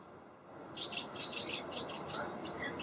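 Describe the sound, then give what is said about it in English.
A house martin's chirruping song: a thin rising whistle, then a quick, steady run of bright, buzzy chirps in short bursts, clear with no voices. “They have a lovely little chirruping song, and if you're lucky enough to have them on your house, then pat yourself on the back, because house martins nest only on houses that have a happy household, a happy family bird.”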